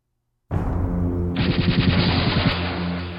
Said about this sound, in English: I grinned as the shot from my particle cannon crossed the Rio Grande, the shockwave slicing through the water before smashing into the immense 10-gallon hat on the head of the 30-foot-tall mechanoid there.